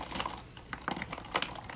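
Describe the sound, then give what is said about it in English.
Pens, including a bear pen, are dropped into a container one after another, making a series of light plastic clicks and rattles, fairly quiet, with no talking. “I have a bunch of pens, pen. All these pens are really cute though. It's like, bear. Pen, okay, put that in.”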